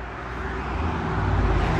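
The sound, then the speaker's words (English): A loud car drives past, its broad engine and road roar building steadily over the brief moment, with no one talking over it. “That's a nice car, brother. That's a nice car. Motherfuckers, it's ruined the moment.”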